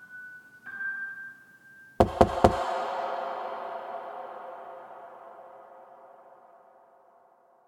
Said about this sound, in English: And so I went to open the door, and of course there was no one there. And she heard it, I heard it distinctly. It was three loud knocks.